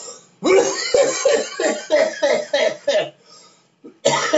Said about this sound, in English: You can be professional like that. Cough right in the microphone.